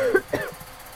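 Two quick, rough coughs in close succession, fairly near, followed by a low steady rumble that lingers underneath once the coughing stops. No one speaks.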